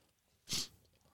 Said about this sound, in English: All right. I'm going to take a swallow of this beautiful aromatic beer.